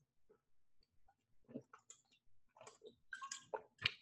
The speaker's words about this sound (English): So we'll take a look at these receivers after I take a drink of water real quick.